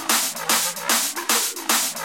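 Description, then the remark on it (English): A loud, dense hardstyle drum loop with sharp snare drum hits added on top of claps and a bright, hissing hi-hat loop, repeating in a steady driving rhythm with short gaps between phrases. No voices. “Then, add some snare drums on top.”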